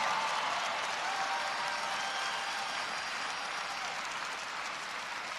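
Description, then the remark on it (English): Sustained audience applause for a young man who saved many lives, a dense, steady wash of many hands clapping at even loudness with no voices breaking through. “Give him applause, come on.”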